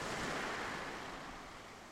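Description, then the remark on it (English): Ocean waves wash against the shore in a steady, hissing roar that swells briefly and then slowly recedes, with no voices present. “Ocean waves are surface waves that occur on the free surface of bodies of water.”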